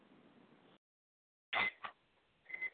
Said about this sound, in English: Sorry, that's my microwave cooking nachos.